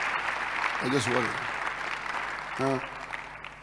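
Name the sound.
audience applause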